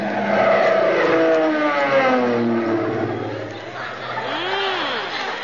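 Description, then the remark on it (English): A low-flying airplane roars past overhead, its loud droning engine sliding steadily down in pitch as it goes by, then a second rising-and-falling whine near the end. “That's mighty pretty flying at that”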